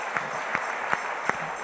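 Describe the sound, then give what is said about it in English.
A church audience claps steadily as a clap offering to the Lord, a continuous wash of hand claps with a few sharper, evenly spaced accents punctuating it, like a rough shared beat. No one speaks. “Then let's give a clap offering to the Lord.”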